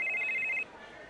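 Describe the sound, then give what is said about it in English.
A single short burst of a phone's ringing tone, as heard while placing a call, sounds clearly for about half a second and then cuts off, leaving a faint background hum. “I'm going to get on the phone. I'm going to call him aging.”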